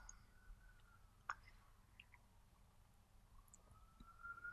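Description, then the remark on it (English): A faint police siren wails outside, its tone drifting up and down over a low background hum, with a brief sharp click partway through. “We even get a siren to signal the end.”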